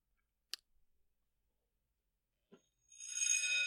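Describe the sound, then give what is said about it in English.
A sharp click and a soft knock in near silence, then a bright, ringing bell sound effect rises and sustains, shimmering loudly until the end. “I'm trying to play a bell noise.”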